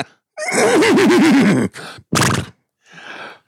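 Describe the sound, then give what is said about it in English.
A horse lets out a loud whinny with a quavering, wavering pitch, followed by a few short snorting bursts and a softer breathy exhale; no one speaks. “Who that clopping in?”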